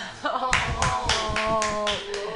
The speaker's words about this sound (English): Hey, clap your hands, everybody.